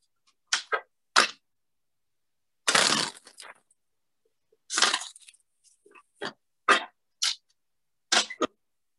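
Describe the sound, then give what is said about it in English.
Tarot cards being shuffled: a series of crisp, papery snaps and taps, broken by two longer riffling bursts, with short pauses between and no one talking. “Someday I'm going to learn how to shuffle like that.”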